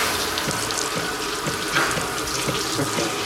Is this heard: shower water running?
yes